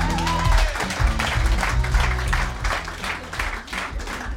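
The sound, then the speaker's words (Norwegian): Steady audience applause greets a man coming on stage, a dense wash of many hands clapping with some background music tones underneath, sustained at a fairly loud level throughout. “Applaus til”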